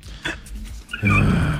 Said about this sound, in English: No, I'm actually on a bus here. You're catching me a bit by surprise.